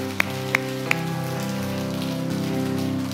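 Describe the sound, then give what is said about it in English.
A church audience claps steadily as a clap offering to the Lord, in a dense, continuous patter over sustained keyboard chords, with three sharper claps standing out near the start. “Yes, give the Lord a clap offering.”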